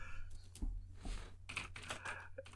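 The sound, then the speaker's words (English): Rapid, continuous typing on a computer keyboard, a dense run of sharp clicks and clacks, with no voices present. “He's typing something into the computer. Don't worry about it. What a furious click clacking away.”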